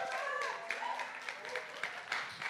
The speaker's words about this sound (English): Sarah, come join me. Everyone give Sarah a round of applause.